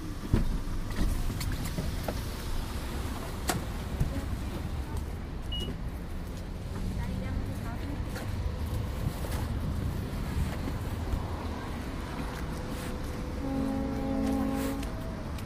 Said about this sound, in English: I hear the ferry.